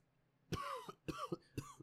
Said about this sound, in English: I'll let you cough for a second. I'm sorry if you can hear it. They can definitely hear it.